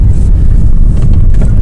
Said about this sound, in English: Oh, the engine's kicked in now, you can hear that.